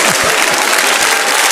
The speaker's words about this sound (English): Yeah, you didn't get it, but that's okay. We'll give you an applause anyway.